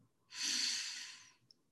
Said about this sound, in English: Breathe in for two.